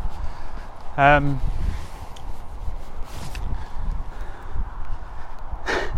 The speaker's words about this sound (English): It's very windy. This isn't going to work on the podcast.